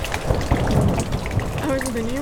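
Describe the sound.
Steady rain patters throughout, a dense hiss of drops on hard surfaces, with muffled voices underneath and a drawn-out vocal sound rising near the end.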